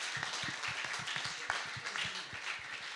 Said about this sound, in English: Давайте мы все им поаплодируем за хорошую работу. Let's all applaud them for such a good job.